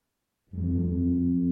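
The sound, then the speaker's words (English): After a brief silence, a siren sounds from the direction of the palace: a low, loud, droning wail that holds a steady pitch with rich buzzing harmonics and no voices over it. “And you start to hear a siren coming from the direction of the palace.”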